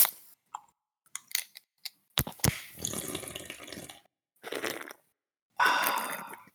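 A can of 9.6% ABV beer cracks open with a few sharp clicks and a pop, followed by fizzing hiss and bursts of pouring or foaming liquid, clear with no talking.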